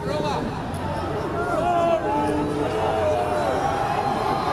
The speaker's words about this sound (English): Getting booed by people sitting in the fucking grass. Goddamn launch seats.